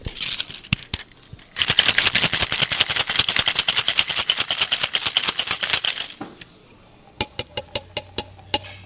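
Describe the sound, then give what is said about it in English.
Ice rattles hard inside a cocktail shaker as a gin cocktail made with London dry gin is shaken, in a fast, steady burst lasting several seconds, framed by a few scattered clinks before and a short run of sharp, evenly spaced clicks afterward. “We're going to shake this all up.”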